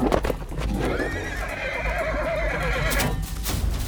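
A horse whinnies loudly in a long, wavering neigh, while hooves clip-clop in a steady, busy rhythm underneath. No one speaks.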